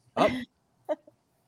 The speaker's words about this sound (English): Oh, the dog. Where's the doggy? Where's the doggy? Dog's on the loose.